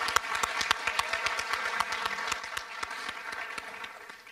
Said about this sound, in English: Let's give a round of applause for 1440 Interact.